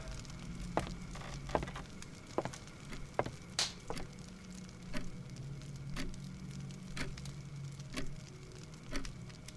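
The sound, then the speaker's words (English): Steady, quiet ticking of a clock bearing a crest that looks like a rabbit, sharp little clicks repeating roughly every second over a low background hum, with no one speaking. “Wait, this clock has a crest on it.”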